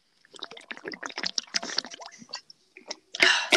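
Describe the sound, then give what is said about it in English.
Loud, close-up drinking of lemon water: a rapid series of wet slurps and gulps, ending in a brief breathy exhale after the last swallow. “You drink so fucking loud.”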